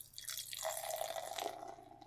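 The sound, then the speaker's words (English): Bootstrap Brewing's Wreak Havoc, a massively hopped Imperial Red Ale at 8.5% alcohol by volume, glugs and splashes steadily into a glass, its hollow tone rising slightly as the glass fills. Fairly loud, with no voices over it, lasting about two seconds. “And the pour.”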